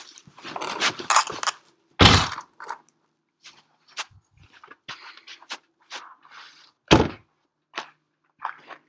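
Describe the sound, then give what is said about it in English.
A car door slams shut twice, each a loud, heavy thunk, as people get out of the car to walk up to the Salem Sue statue, with rustling, light clicks and shuffling movement filling the gaps between and after the slams. “I'm getting out of the car now.”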